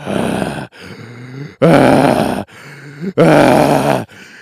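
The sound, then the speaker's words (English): Heavy, close-up breathing right against the microphone: three loud, rasping breaths in a slow rhythm, separated by quieter groaning, voiced intakes, with no talking. “Stop breathing heavily into the microphone over there.”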